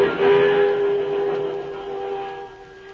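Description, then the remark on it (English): A train rumbles past on the railway, a steady whistle-like tone riding over the clatter, loud at first and easing off slightly as it goes by. “Here she comes.”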